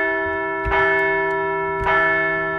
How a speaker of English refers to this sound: Let's ring that bell one more time.